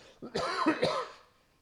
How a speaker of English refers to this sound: I won't even edit that cough out. Because this is one of these sessions where I don't care.